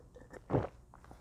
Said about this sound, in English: Sorry, just drank some water.